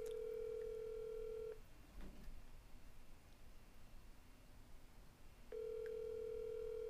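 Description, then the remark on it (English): Ringback tone on an outgoing call to a friend who does not answer: a steady electronic buzz sounds for about a second and a half, goes silent for several seconds over faint hiss, then starts again. “He never answers the phone.”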